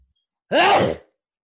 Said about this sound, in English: That sneeze. That sneeze was a lie.